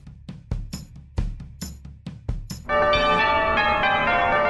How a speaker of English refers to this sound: Hang on, the door's gone again. The doorbell's gone again.